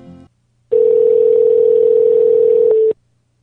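A single steady call-waiting beep on a phone line, meaning the person being called is on the other line. It is loud and mid-pitched and holds for about two seconds before cutting off, with a short burst of line noise just before it and no talking.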